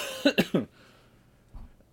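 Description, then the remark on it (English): A quick burst of three harsh coughs in a row, followed by a pause and a softer, muffled throaty sound near the end. “Jeez, oh, man, this cough is going to kill me.”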